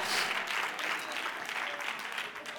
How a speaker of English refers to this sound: Y'all giving me golf claps now because we're not third person anymore.